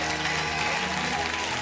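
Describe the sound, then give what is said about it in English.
A church audience claps together as a clap offering to the Lord, a dense, steady burst of applause that holds at an even, fairly loud level for the whole moment, with no distinct single claps standing out. “If you receive that, give the Lord a great big clap offering.”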